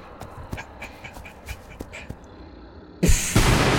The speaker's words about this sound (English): Hear the door behind you get sliced in two by a double-bladed lightsaber.